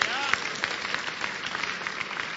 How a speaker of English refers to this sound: You clap like children who have received cake.